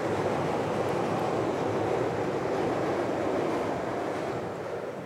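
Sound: train passing by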